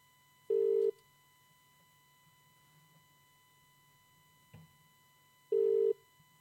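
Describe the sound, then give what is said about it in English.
A phone's ringback tone, heard while calling a friend, sounds twice, each a short, loud, steady electronic burst about five seconds apart, with a faint click and quiet line hiss in between and no talking. “This is going on for way too long. It never works. Not only does it not sound like a normal dial tone or anything.”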